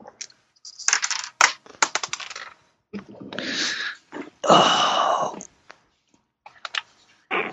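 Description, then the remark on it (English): Dice clatter across a hard tabletop in a quick burst of sharp clicks, followed by louder rattling and scraping, then a few scattered taps near the end. “Come on, Dice. Why do you have to roll in these places that I can't find you?”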